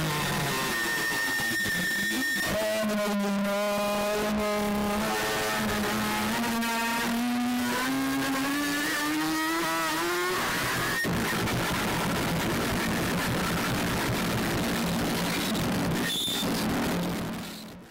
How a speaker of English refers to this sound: All right, well, let's listen to the 8:55 mark and the revving motorbike sound.